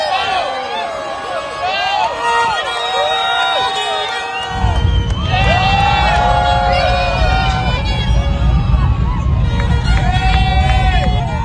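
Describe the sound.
A large crowd cheers and whoops throughout at a Super Heavy rocket launch site, many voices overlapping, and a few seconds in, around liftoff, the deep, loud rumble of the Super Heavy swells up underneath and holds steady beneath the excited shouting, with a man playing a violin mixed in.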